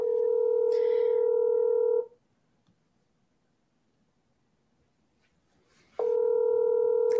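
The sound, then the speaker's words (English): A phone line rings back with a steady electronic tone: one two-second ring, about four seconds of silence, then a second ring beginning. Loud and clear, with no voices. “I don't know if she'll pick up though because she doesn't always pick up the phone.”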